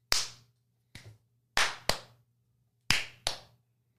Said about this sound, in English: Well, we always start with the clappy claps.